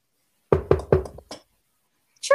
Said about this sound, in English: Here, I'll say trick-or-treat for you. Ready? Ready? So, knock on the door.